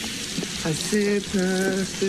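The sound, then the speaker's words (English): Water spills and splashes in a brief burst of hissy noise as a man gets water all over himself, followed by his drawn-out vocal exclamations over the fading trickle. “Oh, shit. I got water all over myself.”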